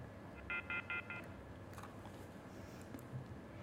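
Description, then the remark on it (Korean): Four quick telephone dialing tones beep in an even rhythm over a steady background hiss as a TV news broadcast tries to connect a call to a reporter at Mokdong baseball stadium in Seoul, then the line falls back to a low, continuous hum. “전화 연결인데”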